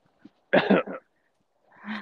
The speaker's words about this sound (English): Oh, now you're coughing, too.